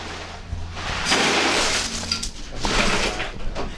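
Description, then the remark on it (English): Fresh ice cubes pour into a cooler in a loud, continuous clattering rush, with bright crackling and clinking that swells in two surges over a few seconds. “Ice in the cooler.”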